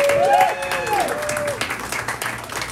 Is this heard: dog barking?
no